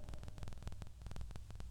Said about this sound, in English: Anyway, the mic static is annoying me so much right now. Can you hear that?